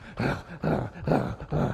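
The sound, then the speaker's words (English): A voice imitates a pull-start engine sputtering, making four rough, guttural bursts in a steady chugging rhythm, moderately loud, with no other speech. “They even made the cords now so they're not as hard to pull because they know you're going to do it a lot.”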